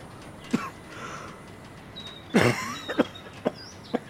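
A single cough, then a heavier coughing fit followed by several short, sharp coughs spaced out, fairly quiet, with no talking.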